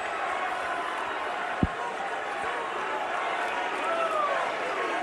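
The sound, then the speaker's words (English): A wrestling crowd chants "Becky two belts" for Becky Lynch in a steady, dense roar of many voices that fills the whole clip, with one short thump partway through and no single voice standing out. “You can barely hear it, but the crowd is chanting Becky two belts because Becky had both titles before and they wanted to see that moment again.”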